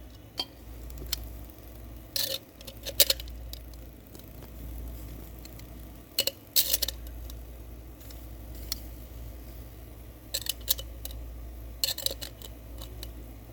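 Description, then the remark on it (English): Hickory wood chips soaked in water are dropped onto hot coals in a grill, making scattered sharp taps and brief crackly hisses at irregular intervals over a steady low rumble, with no talking. “I'm gonna put some of these pieces of hickory wood chips that have been soaking in water for a while.”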